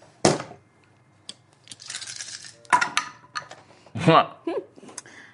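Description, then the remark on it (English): Dice rolled for an intimidate check, totalling 21, clattering onto a hard surface in a few separate rolls, with sharp clicks and a brief scattered rattle, plus a short vocal sound near the end. “It's probably still going to be enough because she rolled enough dice.”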